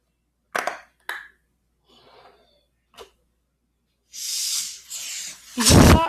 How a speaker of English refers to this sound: Nice sound of a balloon.